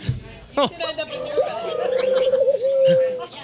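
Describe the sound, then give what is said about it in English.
A warbling, throaty cooing sound, drawn out over a few seconds with a gurgling trill, most likely a person's voice imitating doves rather than real birds. “Okay, enough of the doves.”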